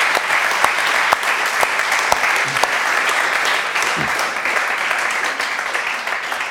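An audience applauds steadily, a dense, even wash of many hands clapping at a strong level with a few sharper individual claps standing out, lasting several seconds without fading.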